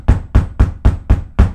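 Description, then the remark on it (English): A boy knocks six firm, evenly spaced times on the solid wooden front door of a house, loud with a deep thud to each rap, in a steady quick rhythm with no voices. “Then I knocked again.”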